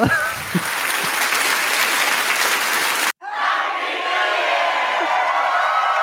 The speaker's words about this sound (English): Let's give an applause to all the old people. Give an applause to living grandparents. Let's go.